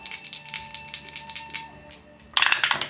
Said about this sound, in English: It's a weird thing with the microphones. It's every time you guys roll, it sounds like you're rolling two dice. Oh, weird. Well, I did just roll two dice. every roll has sounded like two dice. It's because of the slight delay.